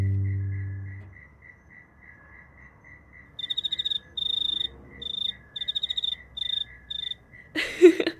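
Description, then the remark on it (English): Crickets chirp in quick pulsing bursts, a steady faint trill running underneath, with a low hum fading out at the start and a brief rustling burst near the end. “Who's to say crickets can't go to Yum Cha, hey?”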